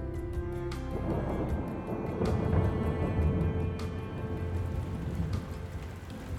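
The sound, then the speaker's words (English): Rain begins to fall in Fatima as a sudden downpour, pattering down steadily in a dense hiss, with a few sharper drips or splashes cutting through every second or so. No voices. “Oh no, it's beginning to rain.”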